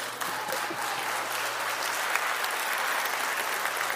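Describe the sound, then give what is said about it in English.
A crowd claps steadily for about four seconds, a dense, even patter of many hands with a faint low hum underneath and no voices, as a new student minister is invited to the stage at a morning gathering. “People never clap for me when I get up here.”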